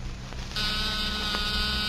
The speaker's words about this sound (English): That's nothing but a small buzzer and battery set. An ordinary door buzzer.